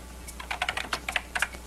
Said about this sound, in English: Yep. Good typer. Good typer. Very loud typer.